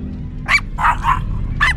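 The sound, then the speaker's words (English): The dog Sparky gives four sharp, high barks in an uneven rhythm, loud, over a steady low background rumble. No one speaks. “Oh no, grab the dog.”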